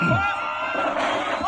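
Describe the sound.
A loud crowd cheers and yells wildly, a dense, steady roar of many overlapping voices with shouts rising above it throughout the short burst.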